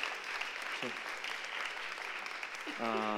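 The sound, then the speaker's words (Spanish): A crowd applauds steadily and fairly loudly throughout, a dense wash of clapping, with a voice briefly cutting in early on and speaking over the applause near the end. “Podéis aplaudir.”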